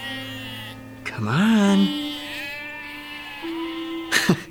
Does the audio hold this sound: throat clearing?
no